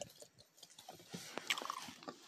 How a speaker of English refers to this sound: Yeah, I'm chewing gum.